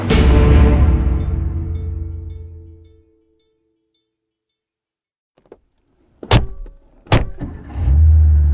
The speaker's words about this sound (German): Es ist ein super teurer Sportwagen, in den die beiden Männer einsteigen.